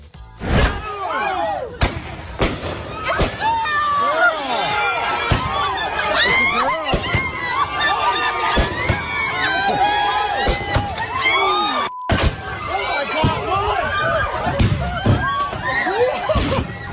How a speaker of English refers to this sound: Wow. It sounds like gunshots. No, they're fireworks. They're definitely fireworks. You can see them.